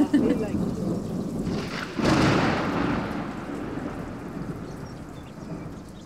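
A heavy thunderstorm in northern Australia, with steady rain hissing throughout and a loud thunderclap cracking about two seconds in, its rumble rolling away slowly beneath the downpour.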